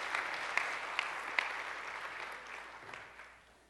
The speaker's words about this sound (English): That was awesome. Okay, clap for him.